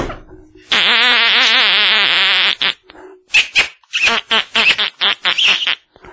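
A duck call is blown loud: first one long, wavering, reedy buzz for about two seconds, then a quick string of short, choppy quacking blasts.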